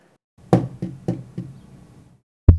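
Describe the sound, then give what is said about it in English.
Four evenly paced knocks with a hollow, low thud and a short ringing tail, then a brief pause before one sharper, louder knock. No one speaks. “Knocking”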